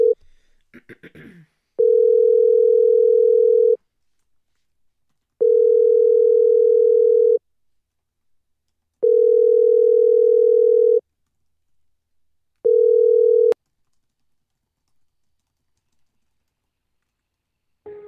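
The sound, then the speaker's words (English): A telephone line rings on a call: four steady, even ringback tones about two seconds each with short silent gaps, heard alone and clearly. A brief burst of clicking comes just before the first ring. “Can you hear the ringing? It's just ringing and ringing.”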